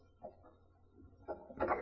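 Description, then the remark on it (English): A key turns in a door lock, making a few quiet metallic clicks and scrapes, then a louder, rattling clunk as the bolt slides home, with no talking. “I'll just lock this.”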